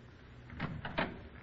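A door is closed quietly: a soft scraping swing and then a muffled thud and click as it shuts, with no one talking.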